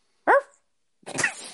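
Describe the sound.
A person imitates a dog barking: two loud bursts, a short sharp bark-like yelp followed after a pause by a rougher, longer, raspier one.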